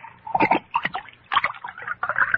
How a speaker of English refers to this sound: But before I do, pour me another glass of wine.